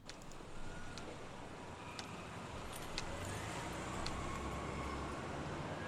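Steady outdoor parking-lot ambience with a low traffic rumble as a person heads to their car. A car seems to swell past partway through, with a few faint metallic clinks and clicks scattered over the background.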